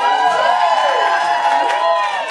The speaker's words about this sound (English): Usually people just kind of laugh. That's the first time I've gotten applause. Thank you.